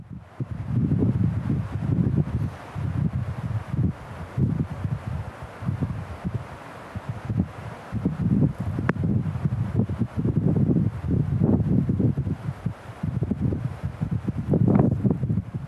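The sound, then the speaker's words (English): Strong wind blows outdoors below the snow-capped Spanish Peaks, above Aguilar, Colorado, in heavy, surging gusts, a constant low roar buffeting the microphone with occasional rustling, loud with no voices. “Here's the thing about the West. There's wind all the time.”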